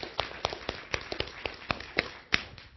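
Sparse applause: about a dozen sharp, crisp hand claps at a quick, slightly uneven pace, with no talking over them.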